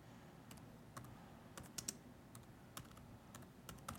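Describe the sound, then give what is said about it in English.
Quick, uneven clacking of keys on a computer keyboard during a quick search, fairly quiet, with short bursts of keystrokes over a soft background hum and no voices. “I hate that my typing gets picked up.”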